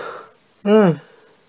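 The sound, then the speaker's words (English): A single voiced yawn rises out of quiet breathing, a short, loud, tonal groan that swells and then fades back into soft breath. “I just genuinely am yawning.”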